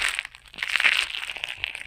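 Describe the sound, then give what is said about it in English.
A car bumping into the car in front of it after missing a traffic light in the town of Shepherd: a harsh, scraping crunch of crumpling metal and plastic that swells and fades over about two seconds, with no voices. “I heard the noise and immediately knew I had hit the car in front of me.”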